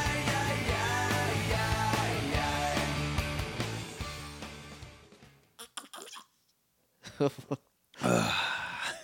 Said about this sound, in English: Gotta get that. I don't know what. That nice high sound. Tried to slurp and it just like squeaked through the cup.